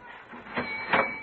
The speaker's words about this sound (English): Open your cash register and make it official. Very well.